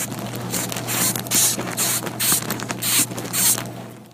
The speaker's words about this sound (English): It's not a person. That's a sound a moth makes. It's the insect world.